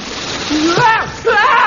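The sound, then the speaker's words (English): A loud, steady rush of water gushes at full force from a fire hose as someone grapples with the nozzle, a broad hissing spray that runs without pause while voices cry out over it in short bursts. “Now, get back to the nozzle at once, and the water will be coming through any moment.”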